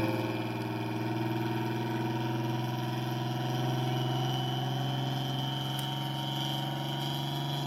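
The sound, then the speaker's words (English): Bob's car engine runs steadily under load on a mobile dyno, a continuous mechanical drone with layered harmonic hum and a faint high whistling whine that holds fairly constant throughout, with no voices. “But this was his Bob's mobile dyno. His dyno video.”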